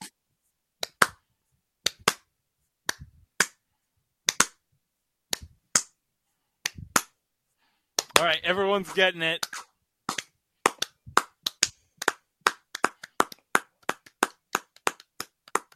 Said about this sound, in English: Who cares? Slow clap. Slow clap.